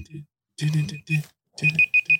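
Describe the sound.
A laptop gives off a high, thin electronic alert tone, ending in a quick run of four short beeps, with someone's voice murmuring underneath.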